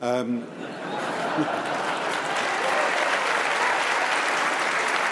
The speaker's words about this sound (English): Well, please do. Let her have her applause.